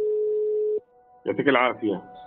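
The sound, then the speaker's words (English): A steady electronic telephone tone hums for under a second, then cuts off, and after a brief pause a voice speaks over a faint lingering line tone. “spends most of his days on the phone with someone in Gaza.”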